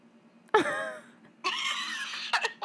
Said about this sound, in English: Signing off as there's the cough. There it is.